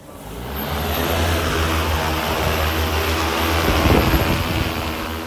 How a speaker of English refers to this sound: The drone rises into the air rather majestically, about 100 metres, and it drops first one and then two dummy anti-tank weapons onto tyres laid out in the form of an enemy tank.